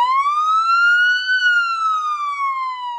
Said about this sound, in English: She blacks out to the sound of sirens.